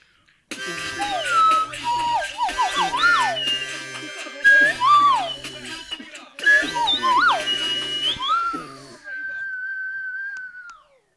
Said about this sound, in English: Time to just add the whistle. Add a whistle.